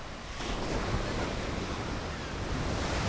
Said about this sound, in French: À Mimizan, les vagues sont hautes et fortes. Ça fait peur, mais c'est aussi super amusant.